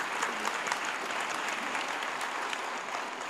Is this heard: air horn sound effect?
no